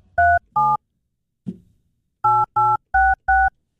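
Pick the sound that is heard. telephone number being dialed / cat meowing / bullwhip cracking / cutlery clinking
telephone number being dialed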